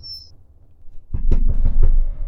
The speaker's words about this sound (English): There was a knock on the door behind you.